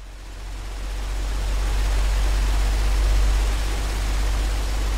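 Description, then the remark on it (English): Four huge, swamp buggy-sized fans blow with a steady, storm-like rushing roar over a deep low rumble, swelling slightly in loudness and holding constant throughout, with no voices. “And why am I staring at four swamp buggy-sized fans?”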